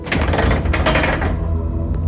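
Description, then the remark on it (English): A heavy, scratched and dented steel door grinds open, a low rumbling scrape with metallic rattling that keeps going for about two seconds and ends in a faint click. “This leads to a basement or something. The steel door is scratched and dented to shit.”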